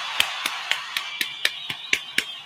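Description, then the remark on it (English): Steady hand clapping, about nine sharp claps at an even, fairly quick rhythm, like one person applauding, with no talking over it; a round of applause for the sponsor 583 Expressions. “Also, let's go ahead and get another round of applause to 583 Expressions.”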